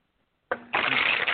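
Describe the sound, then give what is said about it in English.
Playing cards being shuffled, a short riffle followed by a longer, louder burst of rapid flapping cards, with no voices. “Can you, like, raise the volume on your shuffling cards a little bit higher?”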